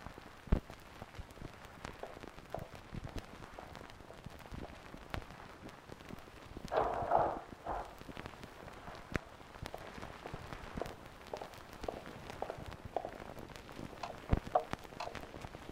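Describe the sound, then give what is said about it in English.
Quiet outdoor nighttime ambience heard through an opened door: a steady, soft hiss with scattered faint ticks and pattering crackles, and one brief louder swell midway through. No one speaks. “You should be able to hear the outside now. I have opened the door. It doesn't sound like much other than nighttime, but this is just so you will know all the sounds as I have come to know them.”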